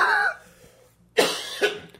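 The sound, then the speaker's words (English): A person coughs hard in a loud burst, with a few harsh hacking coughs in quick succession after a short pause, like a sputtering coughing fit. “I don't know why I started coughing like I was dying.”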